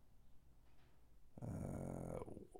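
A dog lets out a short, rough growl lasting under a second, loud against a quiet background with no talking.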